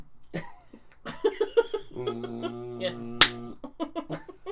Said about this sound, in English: Looking at the decibel levels on this thing, where you just did clap marks. Everyone just ripped off their headphones.